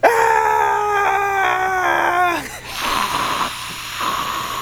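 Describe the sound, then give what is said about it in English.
A voice imitates a feral scream with a loud, sustained, wavering high-pitched yell lasting about two seconds. It dips in pitch as it ends, and rough, breathy noise follows. “A little bit more of like a feral scream.”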